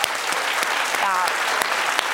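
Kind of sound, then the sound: crowd, hands clapping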